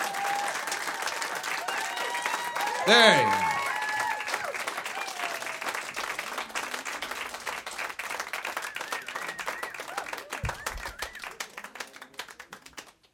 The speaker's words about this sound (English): Come on. You can clap louder than that. Keep clapping. They're not out yet.